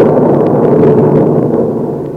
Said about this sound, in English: I got to White Oaks in an electric storm, where the skies giving me a 21-gun salute.